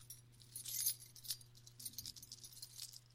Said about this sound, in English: Kind of keys. And it sounds like that the keys are dragged around.